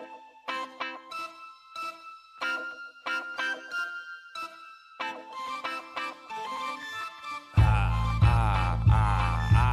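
A bright, melodic phone ringtone plays a repeating electronic tune for several seconds as a call is placed to a guest on a football talk show, then cuts off as a louder, fuller burst of sound takes over near the end.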